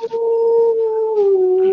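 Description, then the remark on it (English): A person imitates a wolf howl: one long, loud, sustained tone held steady, then sliding slightly lower toward the end, with no other sounds. “You sounded like a real wolf.”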